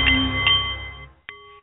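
A Nepalese meditation bowl chimes with a rich, sustained metallic ring that slowly fades, then is struck again for a second, brighter tone. No voices are heard.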